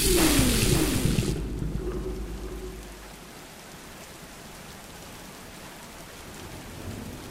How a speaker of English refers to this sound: It looks like the storm here lasted longer than they thought.